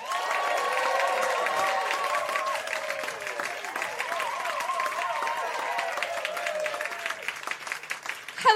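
A crowd at The Other Palace applauds steadily for several seconds, the dense clapping mixed with scattered cheers and whoops, holding at a fairly even level before tapering slightly at the end.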